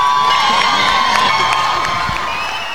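A large concert crowd in Vancouver, BC, cheers and yells continuously, a dense roar of many voices with scattered whoops rising above it, loud and sustained throughout without a break.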